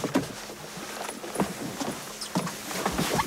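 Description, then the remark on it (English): Someone steps aboard Amaryllis, a moored sailing boat about 30 feet (10 metres) long, originally built in Italy, now in Ireland, on a lake: a few hollow thumps and creaks from the hull and deck, spaced irregularly over a steady outdoor background. “Okay, coming aboard.”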